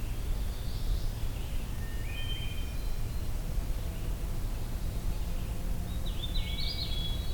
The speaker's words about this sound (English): Oh, hooded warbler, actually.